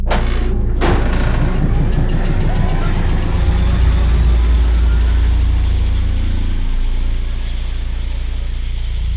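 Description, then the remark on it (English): An MRI scanner, switched on by a nurse with a patient inside, starts up with a sharp click, then settles into a loud, steady low hum threaded with fast rhythmic knocking that runs throughout, with no voices. “The nurse's hand, gone, turns the machine on.”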